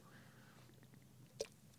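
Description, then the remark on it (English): A quiet sip of Red Bull: faint wet mouth sounds and a single soft click of lips or can near the end, with no talking. “First of all, I'll tell you a couple things to help you out as soon as I get a sip.”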